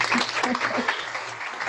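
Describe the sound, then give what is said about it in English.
A steady burst of studio audience applause on the show Focus Ed, dense crackling claps with a few voices and cheers mixed in, holding at a fairly even loudness throughout. “Everyone, how about a hearty round of applause from the studio audience?”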